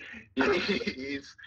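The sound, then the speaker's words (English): A single loud cough with a harsh, throaty rasp, lasting about a second before trailing off, with a faint breathy sound before it. “No, cue the cough.”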